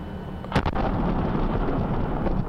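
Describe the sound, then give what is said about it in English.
An explosion in a video being played: a sharp explosive blast cracks out near the start, then gives way to a heavy, sustained low rumble that roars on without letting up, like a big detonation echoing outdoors. “Blessed explosion videos.”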